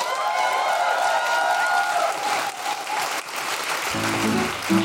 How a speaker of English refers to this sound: Help us in giving a big round of applause for Desiree Burch.